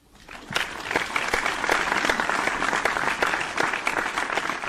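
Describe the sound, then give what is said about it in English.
A burst of applause that swells within the first half second and holds steady, dense and fairly loud, with many overlapping hand claps forming a continuous crackling wash and no voices. “Please clap.”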